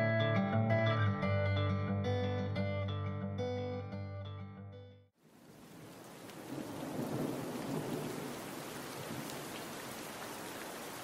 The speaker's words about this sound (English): It was raining. They didn't say too much, just that it was a little early in the year for a storm